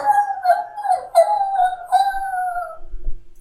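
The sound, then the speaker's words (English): Around 100 wolves howl together in the distance in long, wavering, overlapping tones that slide slowly downward for about three seconds, then fade out, followed by a soft low thud. “And suddenly in the distance, you hear the sound of, like, 100 wolves.”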